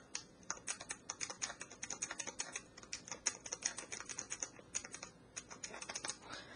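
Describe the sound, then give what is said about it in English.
Typing on a Braille Plus keyboard: a rapid, irregular stream of crisp key clicks over several seconds, with no voices. “Now I'll type something on the Braille Plus keyboard just for reference.”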